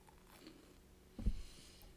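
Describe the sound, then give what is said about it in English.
A person chewing food: one short, muffled crunch of a bite partway through, surrounded by near silence with no talking. “I'm so sorry. I'm chewing.”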